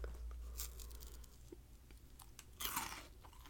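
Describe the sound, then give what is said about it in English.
Crunchy chewing of a crisp rice treat with caramel sauce, covered in puffed rice, with irregular sharp crackles and bites over a few seconds, getting louder and denser near the end, with no talking. “Oh, it's crunchy. It has caramel.”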